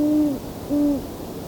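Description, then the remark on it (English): Two owl hoots from a male and female pair, each a steady low tone that slides down briefly at its end, separated by a short pause, with no talking. “some of the best hooting. There we go. Well, it's both male and female here.”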